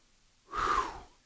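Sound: gasping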